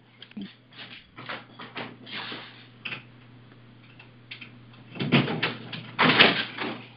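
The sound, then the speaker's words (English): A door is unlatched and opened for a visitor: a series of clicks and knocks, then louder rattling and scraping toward the end, over a steady low electrical hum. “Somebody's just at my door. I'm going to pause you. I'll be right back.”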